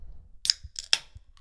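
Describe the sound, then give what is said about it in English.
A Pilsner beer can cracked open at a barbecue: a sharp metallic click, a brief fizzing hiss, then a second crisp snap of the tab, with no one talking. “Pilsner pop.”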